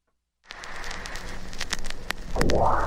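Dense surface crackle and scattered pops like a worn vinyl record, steady, with a rising swoosh of noise near the end. No one speaks.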